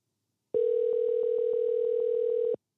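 A steady telephone dial tone hums alone for about two seconds, loud, as a phone call is being placed, then cuts off abruptly. No voices are heard.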